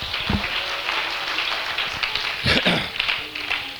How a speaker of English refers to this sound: Well, let's clap our hands for just a few seconds.